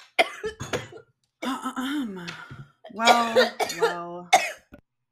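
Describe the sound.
A close, loud coughing fit: several harsh coughs come in clusters with short pauses, some rough and strained with a raspy, voiced edge, spread across a few seconds.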